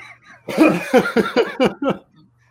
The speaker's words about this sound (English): Is that a standing ovation I hear off in the distance? No, that was just me coughing.